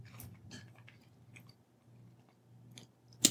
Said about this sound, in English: You call me mid sip.